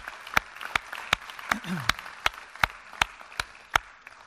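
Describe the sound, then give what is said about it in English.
A church audience applauding its standing leaders, with one sharp, steady clap ringing out about every third of a second above a softer wash of clapping, and a brief murmur of voice in the middle. “Okay, yeah, let's give them a round of applause and honor them.”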